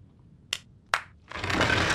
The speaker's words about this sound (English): See? The entrance opens with a clap! Alien technology. We call it the Clapatron.